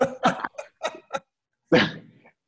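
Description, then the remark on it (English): A run of five quick puppy-like yips from Miel, a newly adopted puppy, in a choppy rhythm, followed after a short pause by a longer breathy whine that fades out. “My puppy.”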